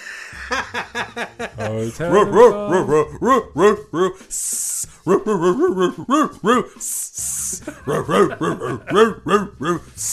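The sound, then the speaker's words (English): Voices imitate dogs with quick, rhythmic bursts of barking, broken up by two long, breathy snake-like hisses, all fairly loud, with some chuckling mixed in. “Oh, I thought it was dogs and snakes.”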